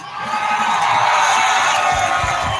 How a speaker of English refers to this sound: All right, welcome in, hockey fans in the Desert Southwest. What a great welcome. What a great applause.